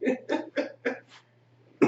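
A rapid fit of harsh coughing from a person smoking weed: five hacking coughs in quick succession, tapering off, then one more sharp cough after a brief pause. No talking.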